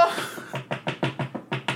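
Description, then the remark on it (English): A quick, even series of about seven knuckle knocks on a glass window, sharp, with no voices. “We can knock on the glass, I guess.”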